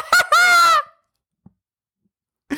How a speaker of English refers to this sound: What? Is she arguing with a parrot?